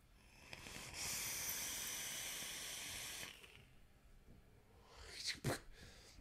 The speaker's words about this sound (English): Big 4.5 millimeter single coil. It's just a single coil deck, which I find so fascinating. So fascinating. Here, let's give it a vape here. Pony on Acid 0.4, 94 watts.